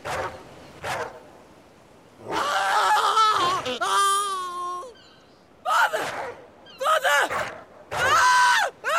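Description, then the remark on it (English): Several loud, strained human screams in separate bursts from a video game, as a father and son are attacked and killed off camera by a wolf, rising and wavering in pitch, with short pauses and ragged gasping cries between them. “So we hear the screams, and then if you go to that location afterwards, you see the blood on the ground.”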